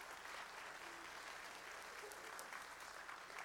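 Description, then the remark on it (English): A church audience claps steadily for several seconds, applauding the church board and staff for their work: a dense, even wash of many hands with no pauses and no talking over it. “And I would encourage you to give the board and the staff a round of applause for the work that they've done.”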